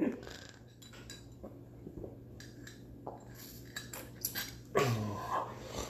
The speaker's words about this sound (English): But first, before we get into that, let me get a sip of my coffee, because, you know, Friday mornings are a bitch without coffee.